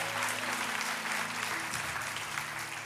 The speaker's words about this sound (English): Can we show some love and some honor to our pastors? Come on, clap your hands.